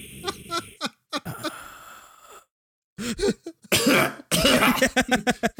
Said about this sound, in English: Just cough in their face. Yeah. I think he needs a glass of water.